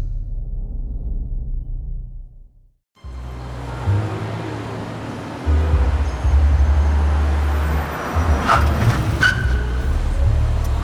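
vehicle, car driving and arriving

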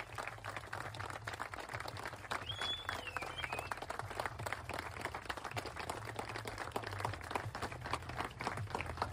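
crowd, crowd cheering and clapping

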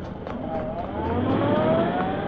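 vehicle, car driving away

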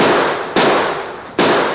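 sound effect, gunshots

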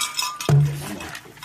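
household object, glasses clinking

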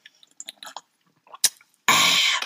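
food or drink, sipping iced coffee

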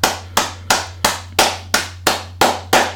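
crowd, round of applause

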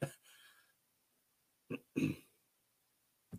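human body sound, cough

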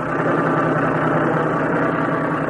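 vehicle, truck engine running

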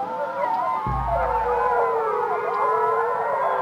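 animal, wolves howling

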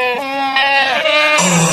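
animal, goat bleating

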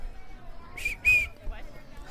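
human body sound, whistle

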